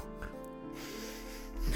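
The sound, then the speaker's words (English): A voice imitates a pig with a short run of low, nasal oinks and grunts, ending in a louder snorting burst, with no other talking. “It oinked and made some really cute sounds like”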